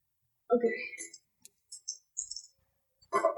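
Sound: dice being rolled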